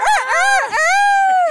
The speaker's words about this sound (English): But they're crowing as she's like, look at these relics. How respectful is it to have a rooster crowing?